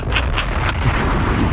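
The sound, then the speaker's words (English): A rapid series of heavy bomb explosions booming over a continuous deep rumble, loud and chaotic, with several sharper bangs bursting out every few tenths of a second and no voices. “Bangs. Bombs.”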